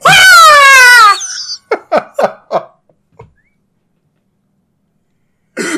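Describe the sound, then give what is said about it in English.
A person screeches a high, wavering eagle-like cry for about a second, followed by a few short breathy vocal bursts and giggles, then silence and a brief final burst. “That is a very good eagle noise.”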